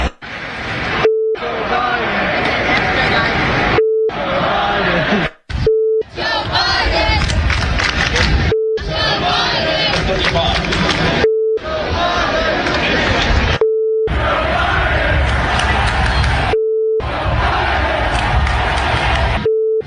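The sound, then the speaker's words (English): A large crowd chants loudly in rhythmic unison, as at a stadium, in repeated bursts separated by a steady electronic bleep tone that cuts in between each chant. “And it's breaking out now all over the country. Broke out at the Ryder Cup. Talladega, you name it, it keeps happening.”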